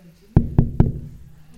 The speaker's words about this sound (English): So every day I would go to his room and knock.